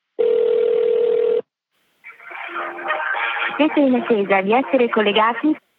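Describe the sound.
A single long, steady telephone ringback tone sounds loudly over a thin phone line as a call is placed to the Vatican's Office of Blessings, then stops; after a short pause, a voice answers and talks through the same tinny line.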